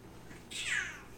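A single cat meow, clear and fairly close, rising quickly then sliding down in pitch over about half a second against a quiet background.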